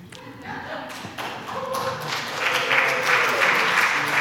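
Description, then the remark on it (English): An audience at a church service claps, the applause starting scattered and swelling into a steady, dense, reverberant patter of many hands, with some murmured voices underneath. “No clapping.”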